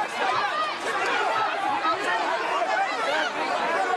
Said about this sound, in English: An angry crowd swarms around a man wearing an Australian flag and shouting abuse. A huge police presence form a ring around the man, moving him through the protesters, defusing the flashpoint.